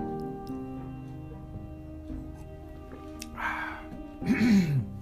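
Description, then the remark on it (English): A man clears his throat twice in quick succession, two rough, gravelly bursts, the second louder and more forceful, with no talking around them; it is cold out. “Let's start as usual, as I clear my throat again and again and again.”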